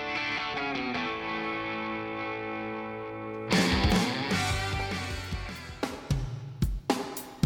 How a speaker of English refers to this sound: I just love the echo on that snare. That's so well recorded, isn't it? It's a lot of reverb.